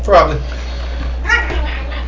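A dog lets out two short whining yelps in the background, one near the start and another about a second later, over a steady low hum.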